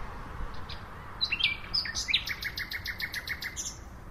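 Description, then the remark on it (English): A male nightingale sings at night, around 3 a.m., just arrived from West Africa to mate; rich whistled notes give way to a fast, rhythmic series of repeated chirps, clear above a soft, steady background hiss. “This is the first nightingale I've heard this year.”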